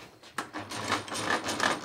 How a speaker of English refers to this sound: This is a 1953 drill press, but this is a hand drill, probably about 1910, 1920.